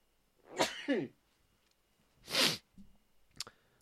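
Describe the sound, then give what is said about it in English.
Sneezing with hay fever acting up: a voiced, gasping burst, then a loud, breathy sneeze blast, followed by a short, sharp snort. No talking, only quiet background noise between the bursts. “Oh, why do I keep wanting to sneeze today? It's like my fucking hay fever's acting up.”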